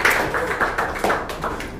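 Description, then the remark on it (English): An audience at a comedy show in a bar claps steadily, a dense patter of many overlapping hand claps at an even, sustained level with no voices over it. “Give it up for that.”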